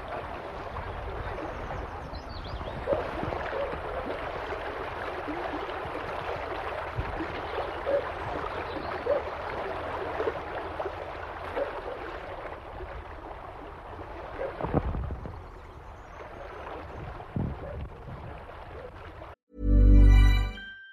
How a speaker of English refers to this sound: Beáil na hÁin is where the water, where the river from the Caher River reaches the Atlantic Ocean, down at the very end. Beáil na hÁin is the name of it, the mouth of the river, Beáil na hÁin.